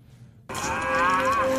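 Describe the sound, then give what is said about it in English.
A feral scream sound clip from a Sharknado movie: after a brief hush, a wild, hoarse scream bursts in and holds loud and steady, its bellowing tone wavering slightly as it goes on; no one speaks. “And then we think he's dead, and all of a sudden he saws through, and we have this sound clip, the feral scream.”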